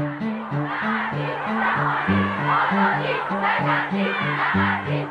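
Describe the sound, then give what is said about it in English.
A crowd of women marching in the streets of Tehran chants "Azadi" (freedom) in a steady, repeating rhythm, their voices loud and insistent over a dense wash of street crowd noise. “The women's chant, Azadi, Azadi, shouting for freedom, echo through the streets”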